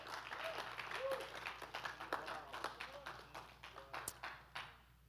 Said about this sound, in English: Yes, let's give the Lord a clap and a shout. Come on. Yes, Lord.